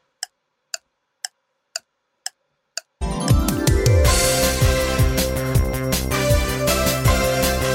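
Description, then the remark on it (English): A clock ticks six times at a steady half-second pace in silence, then loud, dense music with a heavy beat crashes in and fills the rest. “Tick tock, tick tock. It's F1 on the clock.”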